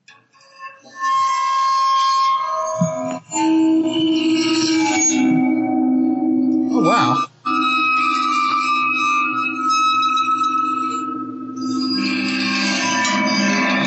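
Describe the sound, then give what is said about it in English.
A waterphone bowed with a violin bow in an unsteady, staggering fashion gives eerie, sustained metallic tones that waver and slide in pitch, loud throughout with two brief breaks. A voice briefly exclaims partway through. “Sort of, it doesn't sound like it's working correctly most of the time when you're playing a water phone.”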